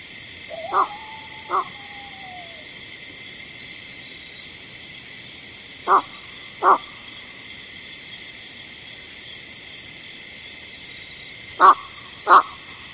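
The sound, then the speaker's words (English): Three pairs of harsh, clipped 'cock-cock' calls of a flushed American bittern, each a quick double call, spaced several seconds apart against a steady, droning chorus of insects or frogs in the background. “When flushed, the American bittern can also make a cock-cock sound that sounds like this.”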